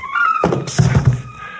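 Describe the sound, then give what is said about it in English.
A hard punch with brass knuckles lands on a man in a sudden loud smack, knocking him out cold, followed by a few dull, heavy thumps in quick succession before the sound fades; no one speaks. “Arnold must have had a pair of brass knuckles hidden in his pocket. Nothing else could have hit me harder or knocked me cold or faster.”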